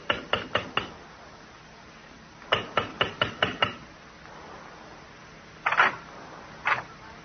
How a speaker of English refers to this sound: And walk down the carpeted corridor. And a sprig of Christmas holly above the brass door knocker. This time we'll knock,